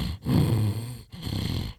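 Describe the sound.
A person's voice mimics rhythmic snoring: two low, rumbling, throaty breaths in a steady rhythm, fairly loud, each separated by a brief pause.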